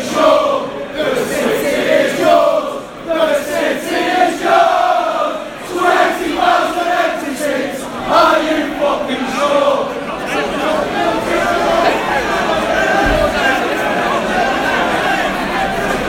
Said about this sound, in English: United fans are absolutely screaming through the railings that separates the away end and the home end.